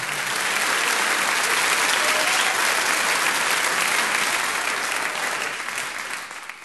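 A sustained round of applause for Comic Gong, dense steady clapping from many hands that holds loud for several seconds before tapering slightly at the end. No voices stand out.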